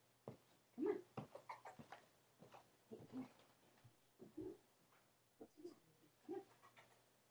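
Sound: dog whining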